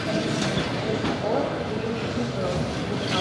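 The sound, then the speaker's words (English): Busy railway platform ambience at Kyiv train station in the evening, with trains pulling in from Kramatorsk: a continuous low rumble of trains moving, with faint metallic squeals and a murmur of voices blending into the steady background. “So we're at the Kyiv train station and it's the evening.”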